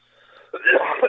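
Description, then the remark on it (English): A faint, wheezy intake of breath gives way to a loud, harsh burst of coughing, rough and raspy, with a couple of sharp spikes as it ends. “Would you stop fucking It's coughing, man?”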